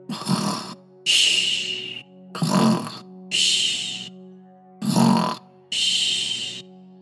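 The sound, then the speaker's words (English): Loud snoring in a steady rhythm: three rumbling inhales, each followed by a breathy, whistling exhale, with no talking. “It wasn't long before … was completely snoring.”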